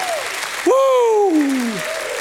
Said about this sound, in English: Give God a hand clap and a shout of praise if he saved you today.